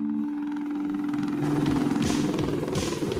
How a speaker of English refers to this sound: All in love with the Apache helicopter. It's one of the most advanced helicopters in the world.